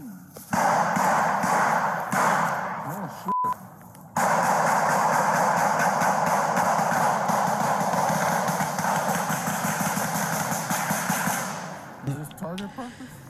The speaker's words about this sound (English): A word of caution, what you're about to hear, many gunshots from the incident. The voices you hear appear to be from other officers.